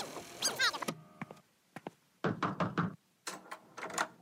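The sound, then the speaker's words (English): Sharp knocks rap on a wooden door, a couple of single taps followed by quick clustered bursts of three or four, fairly loud, after a brief squeaky tonal sound at the start. “And Rita knocked on our door.”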